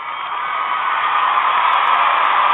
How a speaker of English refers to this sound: But for Russell Westbrook, baby, you get crowd noise. You get crowd noise.